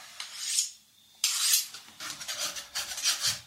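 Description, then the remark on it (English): A knife carves a slice of cheese in a series of dry, rasping strokes, about five of them, short scraping bursts separated by brief pauses, with no voices. “Carve me a slice of that cheese.”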